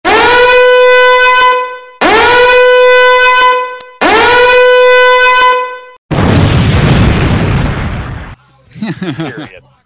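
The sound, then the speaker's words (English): Three loud, steady alarm horn blasts of about two seconds each, all at the same buzzing pitch, sounded as a 3-minute warning during a WWE match, followed by a burst of rough, roaring noise and a brief warbling sound. “And, of course, sound the alarm.”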